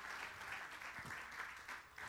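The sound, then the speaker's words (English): A church audience claps their hands to show they believe there is only one true God, in a dense, steady wash of overlapping claps that holds at an even, moderately loud level for the whole stretch, with no voices standing out. “Clap your hands if you believe that there is only one true.”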